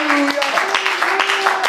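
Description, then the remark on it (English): An audience claps hands in a steady rhythm to worship the Lord, sharp repeated claps running under a sustained voice holding long sung or chanted notes. “Oh, let's clap our hands unto the Lord and worship Him.”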